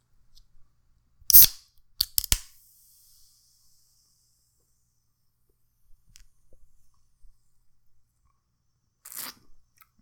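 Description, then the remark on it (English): Sharp bursts of slurping a hazy pale ale beer that fizzed up a lot, with a brief fading fizzy hiss, then quiet small mouth sounds and one more short slurp near the end, with no talking. “Slurping it. I know. It fizzed up a lot on me.”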